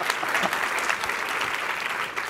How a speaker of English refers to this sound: Clap for yourself.